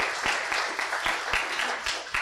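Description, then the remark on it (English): An audience applauds a man for being a sinner with them during a sermon, a dense wash of clapping with a few sharper individual claps standing out, at an even level throughout, with no voices. “one more time, let's give him a round of applause for being a sinner with us today.”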